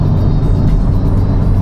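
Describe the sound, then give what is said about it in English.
The engine of a new-version i30N hot hatch drones steadily, a loud, continuous low rumble with a faint whir above it, heard from inside the car while driving on empty roads. “And this is the new version of the i30N. The i30 normal. So this car is in fact the new normal.”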